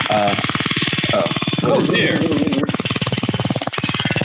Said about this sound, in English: Somebody's cracking. Sounds like a helicopter landing. Yeah, no, it ain't no helicopter. You don't want that thing landing on you. Cracking up the stun gun.